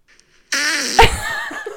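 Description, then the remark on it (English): A fart sound effect played from a phone: after a brief silence, a loud, buzzy, sputtering blast lasts over a second, with a sharper burst partway through. No one speaks. “Give us a representation of that fart.”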